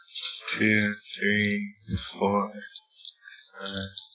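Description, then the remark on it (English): Dice rattle and clatter in quick, irregular bursts of light plastic clicks, mixed with murmured voices underneath for several seconds. “Yeah, let me get my dice.”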